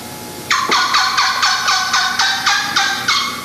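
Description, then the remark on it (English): A young hen turkey gives a quick series of about ten high-pitched, fast yelps, evenly spaced and loud, each note bright and slightly raspy, running steadily for about three seconds with no talking. “High pitch, fast, young hen. Her voice even breaks on her sometimes.”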